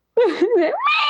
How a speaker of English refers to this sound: Here is what on earth that sounds like. I'm going to play it for you. Those are all a mouse howling. Wow. It just sounds like a screech.